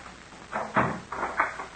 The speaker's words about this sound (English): Close the door